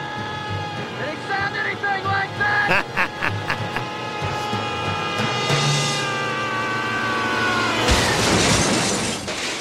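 A shrill, warbling squeal like a pig's cry goes on for several seconds, then a sudden loud crash as a man falling from a roof lands on a car, with metal crunch and glassy, hissing noise trailing off.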